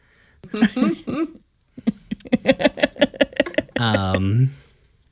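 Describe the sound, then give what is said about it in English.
Several people cough in a loose run of short, harsh bursts, overlapping one another, ending with a longer rough, voiced cough. “Everybody's coughing.”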